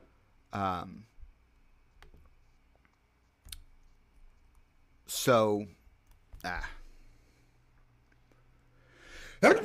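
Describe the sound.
Two loud sneezes several seconds apart, each a sharp voiced burst, with a brief click between them and quiet background otherwise.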